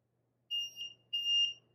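A liquid level indicator on a cup emits shrill, piercing electronic beeps in a steady repeating pattern, three starting in quick succession, clear over a faint low hum, as liquid poured slowly from a pitcher reaches the set level. No talking.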